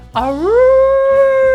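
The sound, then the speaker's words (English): A person imitates a wolf howl with a single loud, rising vocal tone that climbs and then holds steady, sustained for over a second with no other sounds around it. “I am howling because today's episode features wolves pretty prominently.”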